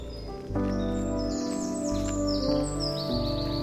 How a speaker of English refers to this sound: I can hear a dunnock singing at the south end of the meadow here. It's quite a subtle fluting song. A kind of tilu-tilu.